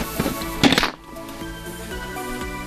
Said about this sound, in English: This thing doesn't make a satisfying hang up sound. Like, there's no bell. I need my red phone.